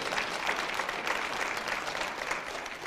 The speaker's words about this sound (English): You're going to start putting, come on, clap your hand.